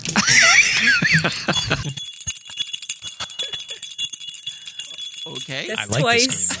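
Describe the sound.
A bell rings out with a bright, high, sustained tone that hangs for several seconds before fading, with people talking just before it and again as it dies away.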